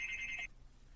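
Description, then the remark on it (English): A doorbell rings once at a house in New York: a piercing, steady high-pitched electronic tone lasting about half a second, then cutting off abruptly into faint background hiss. No one speaks. “Welcome to New York, where the ringers are probably almost as piercing as an ambulance noise.”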